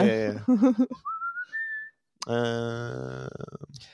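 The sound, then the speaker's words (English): A voice imitates a penny whistle playing an Irish jig, with a clear whistled tone that slides upward for about a second between bursts of lively melodic vocalizing. “Penny whistle solo.”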